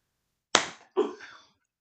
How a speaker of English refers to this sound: And again, I hit your leg.